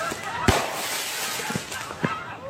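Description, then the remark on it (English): Fireworks in a video being played go off in a quick series: one loud, sharp bang followed by a few smaller pops, all over a steady hissing crackle that fills the background. “Was that not actually the actual bootleg firework guy?”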